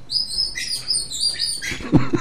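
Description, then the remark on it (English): A squeaky chair squeals in a run of thin, high-pitched, chirpy squeaks lasting about two seconds, ending with a brief lower creak; no one speaks. “I bet you know when I'm going to talk, because you can hear this blinking chair squealing.”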